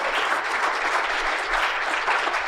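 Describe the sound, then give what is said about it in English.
Steady audience applause for the panelists, a dense crackle of many hands clapping at an even, sustained level throughout with no voices over it. “All right, can we give another round of applause for our panelists today?”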